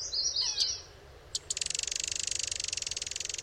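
A Common Yellowthroat sings nearby: a few quick, high chirps, then a fast, steady, buzzy trill of rapidly repeated notes that carries on to the end, with no voices.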